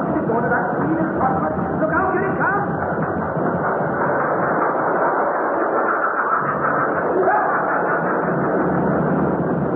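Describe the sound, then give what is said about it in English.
A mine train on number 3 level of a mine rumbles and rattles steadily along the rails, a dense, continuous clatter that holds for the whole stretch, with faint muffled voices buried underneath. “We was walking along number 3 level. Singing a bit. When we heard the train coming.”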